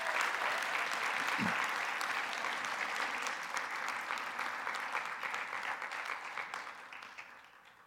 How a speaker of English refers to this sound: And I want to tell you, I am proud of them. So give them another applause as they're seated.